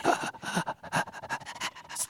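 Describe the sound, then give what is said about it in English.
A person pants rapidly and breathily, imitating a distressed dog, with quick rhythmic huffs for about two seconds and no talking. “panting like a goddamn dog. Like a dog in distress.”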